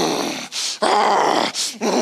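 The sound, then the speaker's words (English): A man voices a rough, angry growl, two sustained snarling bursts separated by sharp breathy intakes, loud with no other sounds around it. “And before you know it, I'm growling.”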